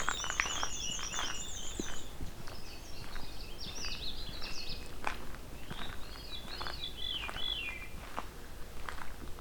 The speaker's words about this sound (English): So, I'm coming up on another black and white warbler. This is in the swampy section where the Canada warbler was before. Just a little bit ago. Canada warbler and veery, and black and white warbler.